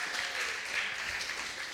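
Audience applause at an Elevate Youth gathering as a guest comes up to the front. A steady, dense wash of many hands clapping, crackly and bright, holds an even loudness throughout with no voices standing out.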